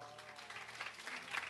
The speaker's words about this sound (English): Everybody's clapping for you.